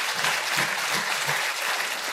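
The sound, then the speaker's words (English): A crowd breaks into steady, dense applause, many hands clapping at once at an even, fairly loud level throughout, with no voices standing out above it. “Yeah, that's worth a clap, yeah.”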